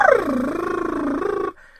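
A single buzzing lip trill vocal warm-up, a voiced, fluttering rumble that slides down in pitch, holds steady for about a second, then stops abruptly. No talking.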